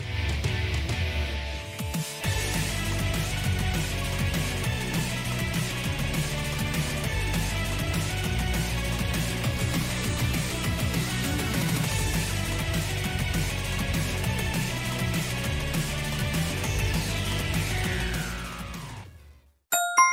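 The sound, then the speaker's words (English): An energetic video game soundtrack song, played as a round of a guess-the-game quiz, plays loudly and steadily, with thumping bass and dense, bright synth layers. A descending sweep closes it before it cuts off abruptly, followed by a brief chime. “Honestly, the song is kind of popping, but I don't know where it's from.”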